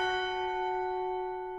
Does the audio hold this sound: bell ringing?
yes